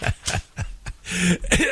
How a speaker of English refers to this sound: And it's not, by the way, pardon me, I choked on a cough drop.